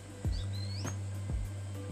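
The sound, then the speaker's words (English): Faint birds chirping in a park beside a water treatment center, with a couple of thin rising whistles over a steady low hum and a few soft thumps; no one speaks. “Birds, you hear that?”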